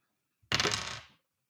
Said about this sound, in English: With advantage, I'm rolling two 20-sided dice.